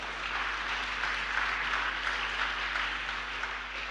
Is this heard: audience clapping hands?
yes